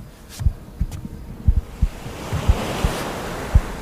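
calm sea waves

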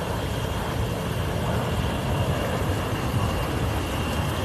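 airplane flying overhead

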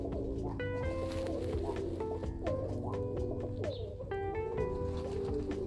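pigeons cooing

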